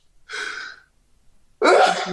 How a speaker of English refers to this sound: excuse me, my bad. This is a live broadcast. Bless you again. I was waiting for the second sneeze.